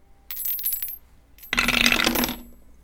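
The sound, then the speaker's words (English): Dice for a luck roll in a tabletop game rattle briefly, then after a short pause tumble and clatter across a hard surface in a loud, busy burst of bright clicking that fades out; the roll comes to 11. No one speaks. “Give me a luck roll.”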